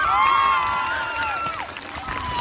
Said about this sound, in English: Thank you, thank you, thank you. All right, let's give Mr. Malik a big round of applause.